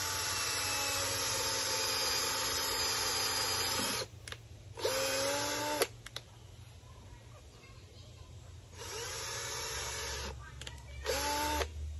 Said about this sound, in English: Okay, so I debarked the branch and sanded it. And now I'm going to drill a hole at the top and the bottom to secure the copper wire. So I kind of let the wood tell me where to drill the hole.